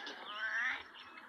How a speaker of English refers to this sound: he's playing Angry Birds during my news segment.